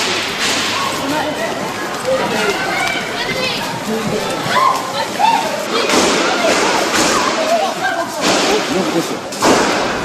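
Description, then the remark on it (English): Sharp gunshots crack out a few times as militants open fire in a shopping mall in Kenya on a Saturday morning, over a dense, reverberant din of panicked shoppers shouting and screaming. “in this recording taken from CCTV Africa, you can hear shoppers panic when militants open fire on Saturday morning”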